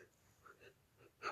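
A soft, breathy yawn with drawn-out airy exhales that ends in a short, louder, squeaky vocal rise. No one speaks over it.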